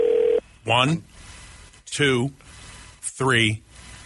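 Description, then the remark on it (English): A telephone rings to show the proper number of rings: a brief steady tone, then three loud, warbling rings spaced evenly about a second and a bit apart, with quiet gaps between them. “what's the proper number of rings? And how long is it in between each ring?”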